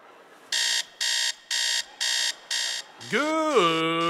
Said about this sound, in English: The last thing he wants to hear is the alarm clock.